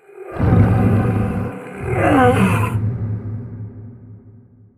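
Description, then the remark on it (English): Four pilots in their cockpits let out ferocious, guttural roars together as their implants come alive and pain floods them with adrenaline, loud, swelling twice before trailing off into a lingering growl. No speech. “Rico, Terra, Romer, and Kit all give off a ferocious roar as their implants come alive with activity and the pain floods them with adrenaline.”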